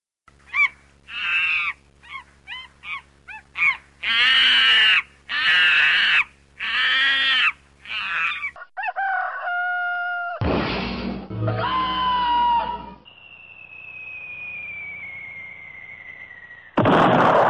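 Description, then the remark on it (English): A large bird squawks loudly and harshly in a rapid series of frantic bursts as a monkey grabs and fights it in a tree, followed by abrupt clattering noises, a brief thump and a long, falling whistle-like tone. “That when he encountered that bird, he clobbered him, grabbed him, he put up a brief fight, and he threw him out of the tree.”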